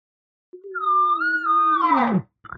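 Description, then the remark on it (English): A bull's single long, drawn-out call answering cow calls, tonal and resonant, holding steady before sliding downward into a rough, grunting finish, followed by a brief short burst. No one speaks. “And the next thing you know, very rare does this bull ever show up out of nowhere.”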